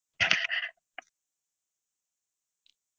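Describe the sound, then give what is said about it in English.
A single sharp cough, a brief harsh burst with a short rasping tail, followed by near silence broken by a couple of faint clicks. “We all have to cough sometimes.”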